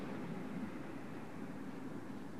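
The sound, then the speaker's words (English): A steady, low rumble of traffic outside, a continuous wash of engine and road noise with no distinct passing vehicles or horns standing out, fairly quiet and unchanging throughout. “The sound of traffic outside.”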